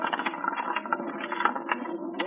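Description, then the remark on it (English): A roulette wheel, with a bet placed on number five, spins with a steady, rapid mechanical clatter and ticking, a dense rattling whir that holds an even loudness throughout, with no voices. “Here we go, round and round. And keep it spinning.”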